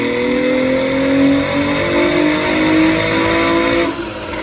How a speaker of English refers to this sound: Yeah, his 300 horsepower 2007 Acura TL Type S on the dyno.